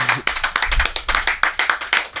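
Applause on the Hype City show for the night's second guest, from what sounds like a few hands: about ten sharp, fairly loud claps at a steady, even pace, with no voices over them.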